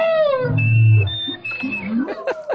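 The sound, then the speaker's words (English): Humpback whale song meets live clarinet broadcast through an underwater speaker and picked up by an underwater microphone: a descending harmonic wail and deep rumbling groan, thin sustained reedy tones held above, then quick rising whoops toward the end, with no talking. “this duet from down there, live clarinet and whale.”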